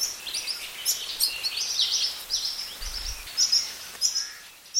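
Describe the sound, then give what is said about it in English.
Juvenile Hawaii creepers (alawi) give shrill, insistent begging calls for food in quick, repeated bursts as they follow their parents around the forest, steady in loudness against a soft forest background hiss, with no one speaking. “For the next few months, these keiki noisily follow their parents around the forest begging for food as they are learning to better forage for themselves.”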